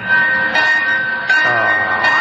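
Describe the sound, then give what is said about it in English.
A loud, shrill steam train whistle, being pulled by someone aboard the train, sounds almost continuously, its steady high pitch swelling in fresh bursts several times amid a rumbling, chuffing background. “Oh, stop pulling the whistle.”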